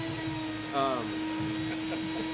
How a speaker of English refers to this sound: I didn't know they were going to turn the vacuum on, but I can hear it in my ear.